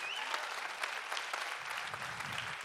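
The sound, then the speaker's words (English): An audience claps steadily throughout, a dense wash of many hands with scattered sharper claps standing out, sustained at an even, moderately loud level. “You can give up a clap for that.”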